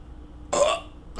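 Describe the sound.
A voice imitates a sleeper's choking gasp: a short, rough, throaty snort, then a pause and a second harsh gulping burst with a rising pitch at the end.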